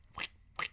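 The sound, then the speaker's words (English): Two quick, wet squelching noises made with the mouth, evenly spaced about half a second apart, like soggy plastic jelly shoes squishing with each step. Fairly soft, with no talking. “No, that sounds like you're wearing jellies that got wet.”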